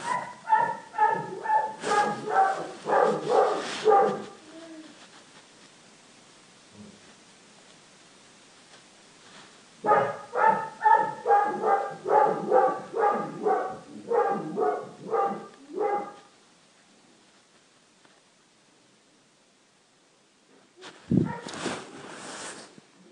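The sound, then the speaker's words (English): A dog barks in two long, rapid bouts of repeated yappy barks, fairly loud, with a quiet pause between them and one brief final burst near the end; no one speaks. “He never barks.”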